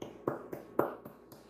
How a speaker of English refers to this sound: Just a light golf clap. Yep. You know, got to show that support and appreciation for those guys handing us a fantastic W right now.